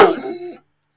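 A single loud dog bark, a short harsh burst lasting about half a second, followed by silence.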